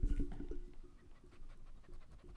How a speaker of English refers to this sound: Actually, if you guys hear like a chewing and like a weird noise coming, my little pug is just going to town on his bone. Like, listen to it.